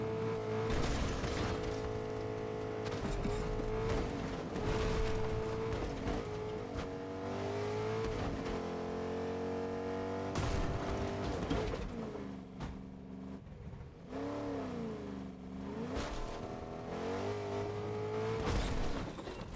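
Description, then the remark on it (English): A video game truck engine roars and revs continuously as the truck is being flipped over, pitch rising and falling as it strains and accelerates, with occasional tire squeal; loud, with no talking. “And there you have it, we have flipped the truck over and completed that challenge.”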